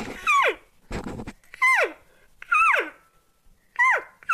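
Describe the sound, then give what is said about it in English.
Imitated elk cow calls, demonstrated to show the different cow calls: about five high, nasal, short chirps and slightly longer mews, each sliding sharply downward in pitch, separated by short pauses and one breathy, raspy burst, with no talking. “So you're hearing chirps and mews there.”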